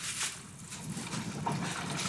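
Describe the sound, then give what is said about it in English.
A thin, steady stream of water runs from a fridge water dispenser for a couple of seconds, a soft continuous hiss and trickle, with no voices. “As a foreigner, I didn't know water can come out of your fridge.”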